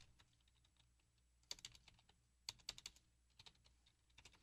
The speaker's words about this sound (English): typing here